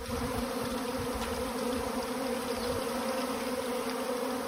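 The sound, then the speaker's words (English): A steady, dense hum of many bees buzzing together, continuous and fairly loud throughout, with no voices present. “Now, the country is abuzz with talk of bees.”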